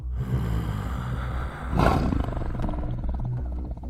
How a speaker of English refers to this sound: A deep growl cut through the chatter as the large shape of the great tiger pawed into the clearing.